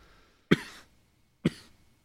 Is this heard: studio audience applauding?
no